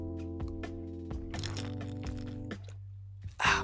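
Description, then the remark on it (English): Someone drinking water: a series of soft gulping and clicking mouth sounds over a steady low hum, finishing with a brief, louder breathy burst. “Let me drink some water.”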